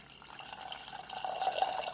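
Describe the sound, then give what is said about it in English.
A cup of water is poured into a pot holding a cup of granulated sugar to make simple syrup, a steady stream that swells a little louder as it goes, with a faint splashy trickle throughout and no one talking. “And then we have our water. Equal parts water and sugar.”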